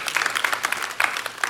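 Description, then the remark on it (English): Steady applause from a church audience thanking God during a sermon, many hands clapping at once in a dense, continuous patter that fills the short moment at moderate volume, with no voices over it. “And can we thank God for that by applause?”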